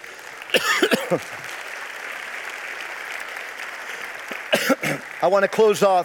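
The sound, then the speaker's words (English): A round of applause from a crowd during a Christmas message: steady, dense clapping that fills the whole clip at moderate loudness, with a man's voice speaking over it at the start and again near the end. “There is a Savior who is Christ the Lord, and I think he deserves a round of applause.”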